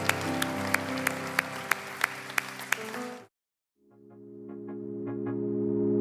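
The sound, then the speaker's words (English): An audience bursts into a huge round of applause for four individuals, dense clapping for about three seconds, then a brief silence before quieter clapping returns over a sustained musical tone. “Can we give these 4 individuals, man, a huge round of applause?”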